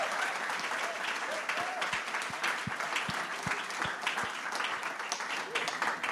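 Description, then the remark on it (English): A sustained round of audience applause at a church service as people stand up and exit the stage, dense and steady for several seconds, with a few deep thumps partway through and no voices rising above the clapping. “So as they stand up and exit the stage, can we just give it up for them one more time? One more big round of applause.”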